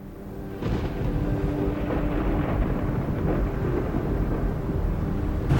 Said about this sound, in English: It was a wild and stormy night. Rain was coming, black ominous clouds rolled across the land. Lightning flashed through the ether and thunder grumbled ominously.